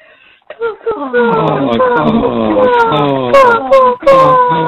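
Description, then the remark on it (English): A person imitates crow caws in a voicemail message, with a run of loud, strained, nasal calls that slide downward in pitch, repeated almost without pause for several seconds. “Our favorite nature sound is crows.”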